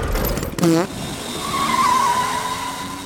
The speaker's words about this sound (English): I'm off to test out my new ride. This bathtub car fast or what? Oh, she's fast.